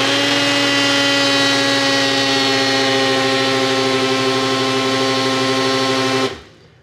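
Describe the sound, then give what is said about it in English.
A blender blending a green drink with Elijah Craig and Southern Comfort whirs loudly and steadily with a harsh motor drone and strong humming tones, running for about six seconds before abruptly shutting off and spinning down. “Let's take it out of the blender and we'll take the lid off.”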